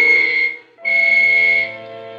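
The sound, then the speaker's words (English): Two long, shrill whistle blasts signaling all clear before a blast is set off, loud, split by a brief pause, with the second one trailing into a lower, steady tone that holds to the end. “I waited for the whistles to signal all clear.”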